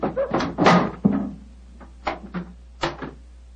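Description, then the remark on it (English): The door of the elephant house being worked open, with a cluster of wooden clunks and rattles, then a few softer bumps and a last thud after a short pause. “Why in thunder doesn't the keeper open the door?”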